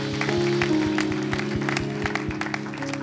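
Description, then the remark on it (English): A church audience claps together to thank God after a prayer, in a dense, steady patter of hands, carried over a sustained, low organ-like chord that holds beneath the applause throughout. “At all of our locations, let's clap our hands and let's thank God for that.”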